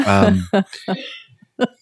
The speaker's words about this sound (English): Excuse me, that is not a coronavirus cough. I hope not. No. Okay. Just letting the world know.